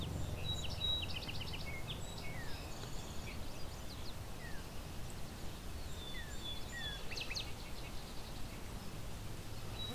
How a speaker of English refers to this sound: Lots of song sparrows around. Northern cardinal. Field sparrow. A savannah sparrow and yellow warbler as well. This is along a rail trail.